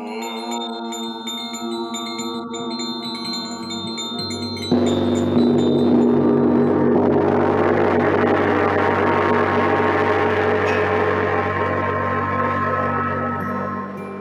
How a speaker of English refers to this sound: I think you should hit the gong again. Yeah, that'd be nice. You can definitely do that. Three, two, one.